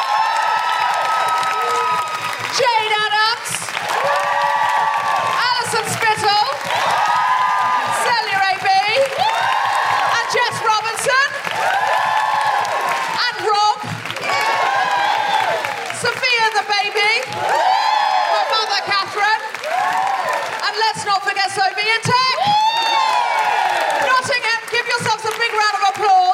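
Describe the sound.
A live show audience applauds and cheers loudly and steadily for the whole stretch, dense clapping laced with rising whoops and shouts, with a voice calling out over the noise at one point.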